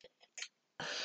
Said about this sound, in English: I'm just going for a slurp, are we? I'm slurping. Slurp, slurp, slurp.